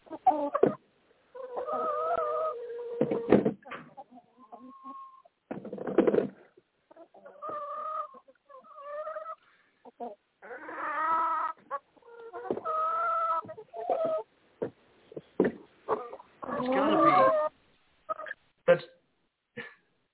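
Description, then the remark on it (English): A chicken clucks repeatedly in uneven bursts over about twenty seconds, heard over a caller's phone line during a call-in broadcast, with tinny, phone-like quality and a few short sharp noises mixed in, moderately loud. “Was that a chicken?”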